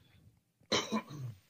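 A single loud cough bursts out sharply, followed by a brief rough, throaty tail, with quiet background before it.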